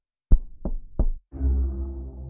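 Three firm, evenly spaced knocks on a door, close and loud, followed by a low, sustained droning rumble that carries on to the end.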